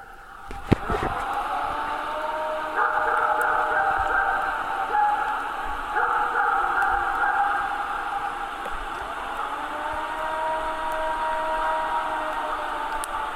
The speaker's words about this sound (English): Let's listen to this recording from back in 1994 that is said to be a recording of a Bigfoot's mournful howl.